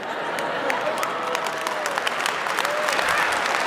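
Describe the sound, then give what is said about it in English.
A crowd claps steadily, dense overlapping applause at a fairly loud, even level, with some faint voices and a few rising calls mixed in. “Oh, now I got some help.”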